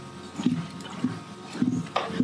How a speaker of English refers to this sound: Okay. Bit more water here.